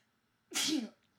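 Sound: sneeze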